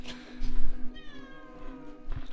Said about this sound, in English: I hope you heard Penny almost just fucking collapse. The least balanced cat of all time.